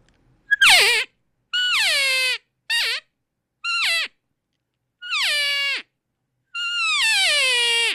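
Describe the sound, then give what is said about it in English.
A fighting cow call blown on a game call: six loud, nasal, whining squeals, each sliding down in pitch, separated by short pauses, the last one drawn out longest, with no talking. “This is our fighting cow call here.”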